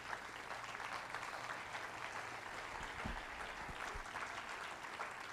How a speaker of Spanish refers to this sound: ¿Puede darle un aplauso a Cristo Jesús?